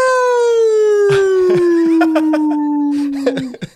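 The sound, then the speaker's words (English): A voice imitates the siren effect of a Pioneer DJ controller, holding one long, loud wailing tone that slides slowly downward in pitch for several seconds, with a few soft knocks and clicks underneath. “And it has the siren effect.”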